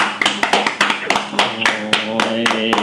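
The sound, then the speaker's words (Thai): A steady run of sharp hand claps at a brisk, even pace, like a small group's applause, with voices talking and calling out underneath. “ขอปรบมือครับ”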